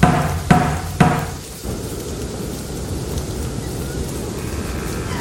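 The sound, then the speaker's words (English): Two loud, heavy knocks land about half a second apart as an iron knocker strikes an old, solidly built wooden door with large black ironwork and studs, followed by the steady hiss of rain that continues after the blows. “An iron knocker was set below this. I grabbed it and knocked.”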